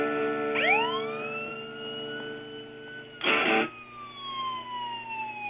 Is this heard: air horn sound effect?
no